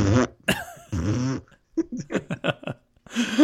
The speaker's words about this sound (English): He goes, oh, Lord. Oh, hold on. He pauses and then farts.